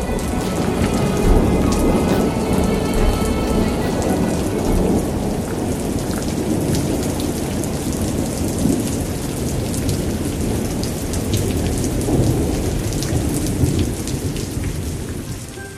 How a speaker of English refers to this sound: Following him, far up in the darkened evening sky, was a monstrous black cloud, flashing with lightning, heavy with water, and ready to quench the thirst of the land.